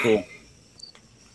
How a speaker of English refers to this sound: That cricket loves to make a. We got to give him his own channel here. Yeah. The cricket.